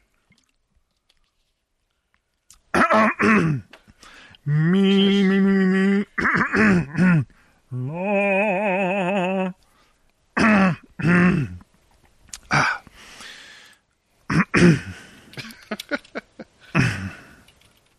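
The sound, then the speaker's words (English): Loud gulping and wet swallowing noises from someone drinking, mixed with throaty, wobbling vocal sounds and short bursts, in an uneven sequence over several seconds. “All right, I'm going to wet my whistle here.”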